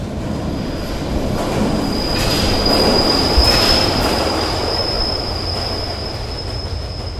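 A subway train rumbles past, a loud, steady roar with a thin metallic wheel squeal ringing over it, swelling slightly in the middle and holding for the whole stretch. No voices.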